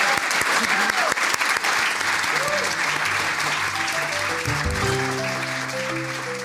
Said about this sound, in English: Let's clap one more time for all of the young writers here tonight.